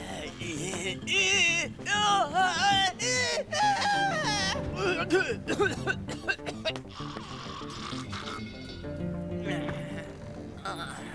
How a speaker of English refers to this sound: Without moving his mouth, Master Tang screams in various degrees of agony as he is lifted out of his bed, leading to another coughing fit and some various disgusting guttural noises.